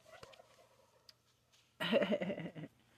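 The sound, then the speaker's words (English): A turkey gobbles once, a loud burst of rapid, rattling warbles lasting under a second, breaking a near-silent stretch that holds only a faint click. “As turkeys say after a little laugh track.”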